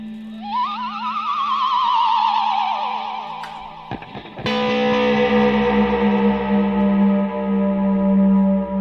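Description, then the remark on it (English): A sci-fi "tractor beam" made with guitar effects: warbling, rising sweeps over a steady low hum, a brief stuttering break midway, then a dense, shimmering sustained drone. No one speaks. “I call this the tractor beam.”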